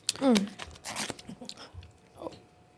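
Chewing of an edible snack that tastes of marijuana, with a few crunchy bites and wet mouth noises spread over a couple of seconds, plus a brief hummed vocal murmur near the start.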